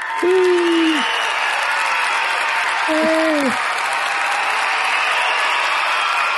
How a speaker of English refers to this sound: Everybody, insert clapping sounds.